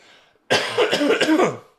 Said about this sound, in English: Excuse me. Apology. Oh, I'm excited. I got myself all worked up already. I'm over here coughing.